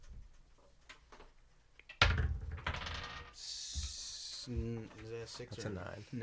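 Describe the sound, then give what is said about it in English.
Faint clicking, then a sharp clatter as a d20 die tumbles across a tabletop, rolled to start combat in a tabletop game and landing on 9, followed by a brief hiss. Voices begin talking right after it settles. “All right, so let's roll, and we're going to do a little combat thing.”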